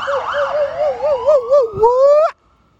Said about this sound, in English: All the people be alarmed and all the people right here with this fire alarm right here. Look at it.